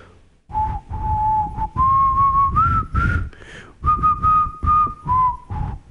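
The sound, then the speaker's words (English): A person whistles a short, wavering tune of sustained notes, fairly loud, with a few brief pauses and some breathy noise underneath. “I can do a lot of whistles. I got some whistles.”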